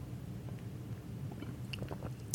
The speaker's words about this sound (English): So take a sip first of the platinum. All right, let's go with platinum here.